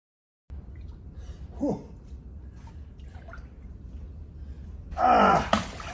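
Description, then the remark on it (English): A man lets out a sharp, loud gasp near the end after a few faint sounds over a steady low rumble, as he gets into cold water. No one speaks. “That's him getting in the water.”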